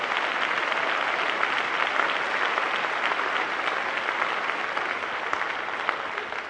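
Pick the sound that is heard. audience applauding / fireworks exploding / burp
audience applauding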